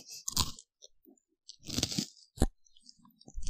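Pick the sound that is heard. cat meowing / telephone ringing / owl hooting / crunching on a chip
crunching on a chip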